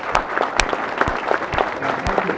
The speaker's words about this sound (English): So anyway, I just wanted to, let's have a round of applause for all the AV people for help.